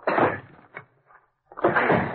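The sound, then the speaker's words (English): A door is forced open with two loud, heavy bursts of banging and scraping, separated by a brief quieter pause with faint knocks. The sounds are harsh, with no talking. “You'll have to force the door.”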